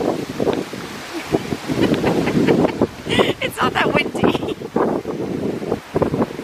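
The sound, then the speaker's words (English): Wind buffets a microphone outdoors in West Hollywood on January 4th in steady low rumbling gusts, loud, with a person talking underneath the noise. “It's not that windy.”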